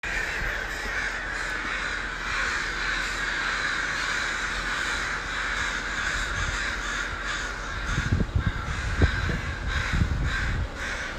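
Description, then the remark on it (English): A flock of crows caws harshly and continuously in the morning, many agitated calls overlapping in a dense, noisy chorus, with a few louder bursts near the end. “I think that there might have been some bullshit-ass eagle flying around trying to mess with them, but you don't mess with a murder of crows.”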